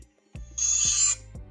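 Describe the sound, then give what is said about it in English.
A time machine whizzes after its door is shut: a bright, hissing high whine swells for about half a second over three low, buzzing throbs that pulse at a steady beat, with no voices. “The students shut the door and the machine begins to whiz”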